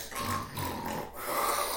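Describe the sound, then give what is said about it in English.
A voice imitates loud snoring, a rough, rumbling nasal snort drawn out over about two seconds with a brief dip in the middle, fairly loud with no words. “Freddy Krueger gonna come to your bedroom the way you fucking snore”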